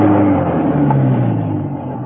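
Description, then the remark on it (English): A car engine hums steadily, a low rumbling drone with a slight rise in pitch as the car comes up a driveway toward a house, then eases off slightly toward the end. “A car was coming up the driveway.”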